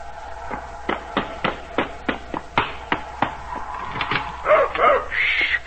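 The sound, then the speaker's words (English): A dog, Pete, gives a quick run of short, sharp barks in greeting at the door, steady and rhythmic, then finishes with a few higher, whiny yelps, with no one talking. “You always meet me at the door, don't you? Good boy.”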